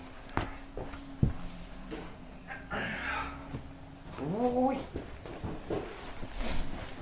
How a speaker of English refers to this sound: This is my cat. So cute. He's a good boy.